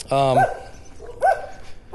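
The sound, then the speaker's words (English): Dogs bark outdoors in a neighborhood in Akron, Ohio, a few sharp, tonal barks spaced unevenly: a longer one first, then two quicker yelps about a second apart, moderately loud against quiet background noise. “There are times when I will go down, and apparently everybody in this neighborhood owns a dog. And apparently they all don't like me.”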